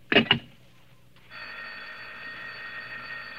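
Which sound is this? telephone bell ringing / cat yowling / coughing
telephone bell ringing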